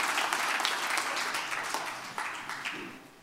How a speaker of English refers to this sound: Can you give the Lord a hand clap of praise as you're being seated this morning?